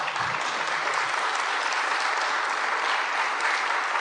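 An audience applauds steadily, a dense wash of many hands clapping at an even, sustained loudness for several seconds with no voices breaking through.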